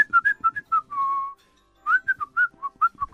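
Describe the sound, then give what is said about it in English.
A person whistles a quick, bouncy tune: a run of short chirpy notes, one longer held tone, a brief pause, then more lively notes. It imitates people whistling in the gym while drying off with a towel, with no talking. “I thought it's just old men that whistle. It isn't just old men that whistle.”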